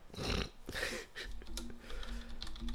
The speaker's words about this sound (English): There's a Google search situation. Yeah, pretend like you can't hear my keyboard clacking.